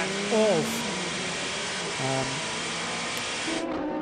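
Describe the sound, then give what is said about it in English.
A race car engine, Jose Maria Lopez's car during qualifying, drones steadily through a wash of noise, its pitch swooping briefly in a few short revs, rising and falling before settling back into a constant hum. “engine you can hear in the background”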